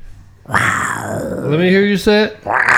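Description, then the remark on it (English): A person voices a loud, gravelly imitation of a tiger roar, one long drawn-out growl whose pitch sags and rises, then breaks into two shorter rough bursts. “That's a tiger.”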